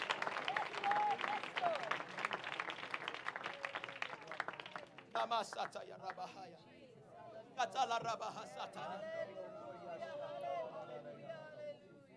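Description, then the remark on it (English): An audience claps their hands in a loud, dense burst of applause for several seconds, then it thins into scattered claps, cheers and a rising murmur of voices. “Somebody clap your hands if you believe that tonight.”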